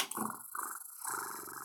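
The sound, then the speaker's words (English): A person voices a menacing, rattling growl in imitation of an animal, a continuous throaty clicking purr with brief breaks, fairly loud, lasting under two seconds. “Not the fucking, it's not purring, but you know that clicking that, sound that they make? That I'm getting ready to kill you shit.”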